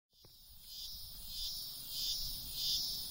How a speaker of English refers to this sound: If you live on the east coast of the U.S., you've probably heard the buzz about cicadas. They're pretty loud, but they make some cool noises, which got me thinking.